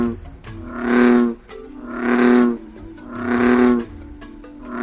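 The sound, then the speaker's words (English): A male bullfrog bellows three times in a steady rhythm, each deep, droning call swelling and lasting about a second, loud with faint background noise between. “That's not surprising when you hear the bellow of a male bullfrog.”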